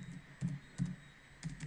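Soft keystrokes on a computer keyboard as someone types into a text field, about five taps at an uneven pace, each a short crisp click over a faint steady background hum. Nobody speaks.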